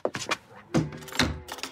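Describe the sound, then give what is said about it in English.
A narrow door beside a kitchen stove, opening onto a store cupboard, is opened: a handful of short knocks and thunks, then a brief creaking scrape and a final soft clunk, all fairly quiet with no voices. “She opens a narrow door beside the kitchen stove, revealing what appears to be, well, it's little more than a store cupboard.”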